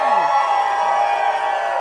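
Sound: audience applause and cheering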